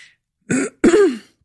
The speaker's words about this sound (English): I just have a funny little frog in my throat, you guys. I don't know if any of you are having this sort of post-COVID cough thing, but I have a little touch of it and it gets me.